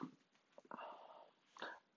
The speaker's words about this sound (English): fucking dog. No, it's not playtime. It's 12:30 at night.